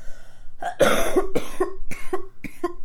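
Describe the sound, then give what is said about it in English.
A loud fit of coughing: about six or seven harsh coughs in quick succession, each a rough burst followed by a short gasp, with no talking. “Cough, cough.”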